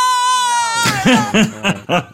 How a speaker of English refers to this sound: And as we learned, this is the noise that happens when you open the closet door from poltergeist.